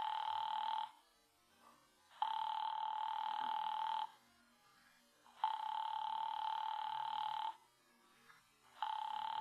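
telephone ringing unanswered

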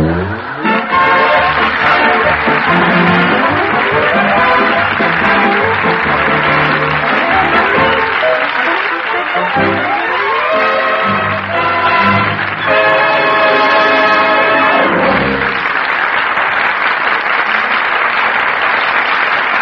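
theater audience applause

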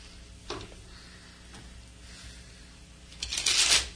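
shuffling tarot cards

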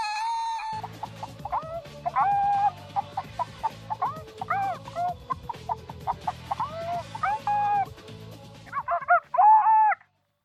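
chicken clucking

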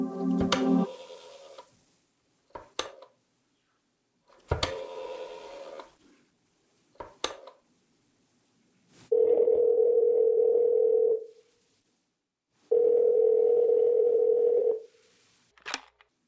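telephone being dialed

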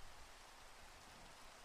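rain falling

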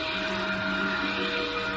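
vacuum cleaner running

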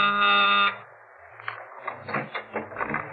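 door buzzer ringing

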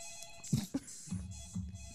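telephone ringing

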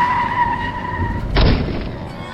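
car skidding

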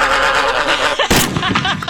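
gunshot

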